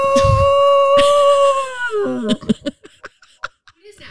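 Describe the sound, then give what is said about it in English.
A dog, Maggie, howls at fire truck sirens in a long, steady, high wail for about two seconds, then the pitch wavers and drops and the howl breaks into short, uneven yips and sounds. “Dude, there's Maggie, fire trucks, and she's howling.”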